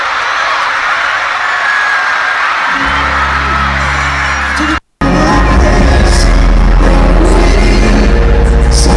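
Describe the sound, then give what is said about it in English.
A loud, dense roar of concert fans screaming and cheering, with heavy low rumble and distorted music underneath, briefly cutting out midway before resuming just as loud. “Yeah, it's mostly fans screaming, but it's so good.”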